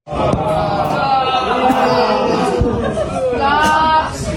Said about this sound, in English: Booing and jeering. Interesting, isn't it?